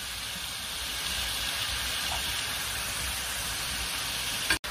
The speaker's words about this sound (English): And the burst of flavor that's going to come out of this is, smells so good. So this is going to saute until it gets soft.